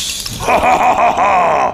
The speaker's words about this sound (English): He freezes solid and shatters into a million pieces.